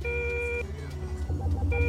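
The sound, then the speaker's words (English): A steady high electronic proximity alarm tone sounds, cuts out, then returns near the end, over a loud low engine-like rumble with no voices. “Proximity alarm.”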